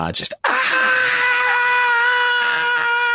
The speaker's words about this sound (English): And again, this intense scream just echoes throughout all of your minds as you're around this thing.